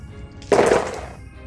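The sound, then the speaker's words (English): A handful of dice, rolled for an arrow shot in a game, clatter and tumble across a hard surface in a dense burst of rattling clicks lasting about half a second, then settle quickly into quiet. “Sounds like a fucking landslide when you roll your dice.”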